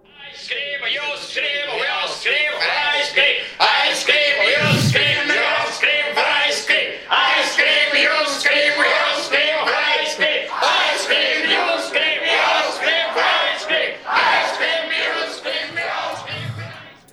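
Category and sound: crowd, crowd screaming and cheering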